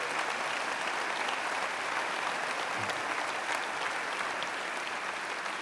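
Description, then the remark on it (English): An audience claps steadily for the church's volunteers, a dense, continuous wash of applause that holds an even loudness throughout with no voices standing out. “parking or whatever, but if you're a volunteer in the life of the church, won't you just quickly stand and we want to just applaud you also and just appreciate you.”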